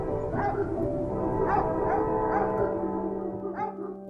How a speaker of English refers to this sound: A farm dog answered the train, and then a second dog joined in. They sang out, trains and dogs, for a real long time.